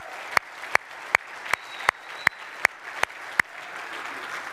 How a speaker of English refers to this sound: And so we just want to say thank you to them. So I thought we might give them a round of applause as well, just to love on them a bit.